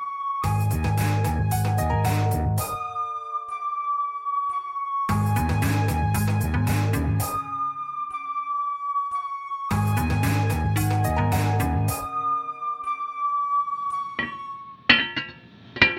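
Heating pipes of the heating system on the Deep Sea Station Amphitrite clank as it comes online, with very hot water running through very cold pipes, in three loud bursts of rapid, rhythmic metallic knocking, each trailing off into a long ringing hum, with a couple of sharp knocks at the end. No one speaks.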